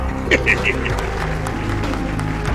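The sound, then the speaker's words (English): Light, sparse clapping from a small audience, fairly quiet and steady throughout, with a brief voice cheering near the start. “The clapping's way quieter.”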